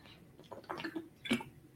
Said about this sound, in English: Sorry, just having a bit of water. I'm getting a bit of a scratch in my throat here.